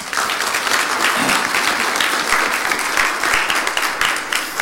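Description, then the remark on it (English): An audience bursts into steady applause, a dense, even wash of many hands clapping at once that holds at a strong, constant level for several seconds with no talking over it. “Let's give some applause.”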